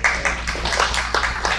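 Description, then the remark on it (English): A soft golf clap: light, scattered applause from a handful of people, with irregular claps overlapping unevenly and no voices over it, lasting under two seconds. “You're like, that's a golf clap.”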